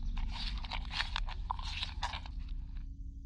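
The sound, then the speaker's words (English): Soft munching on a Snickers candy bar eaten as a snack: a steady run of small crunchy chews for about three seconds over a low background hum, then it trails off. No talking. “I heard a quiet munching”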